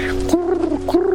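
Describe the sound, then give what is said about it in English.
Pigeons outside a prison cell window coo in low, throaty, warbling phrases, two rolling calls in quick succession with no one speaking. “And I had a window bars, and I could see the opposite wall beside me, and I saw these pigeons.”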